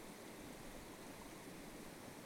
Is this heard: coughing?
no